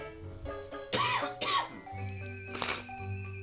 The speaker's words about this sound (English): Excuse me. Sorry for all my coughing, by the way, during this here radio program.